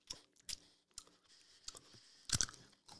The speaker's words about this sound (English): let me chew this into the microphone because it's a new thing, too.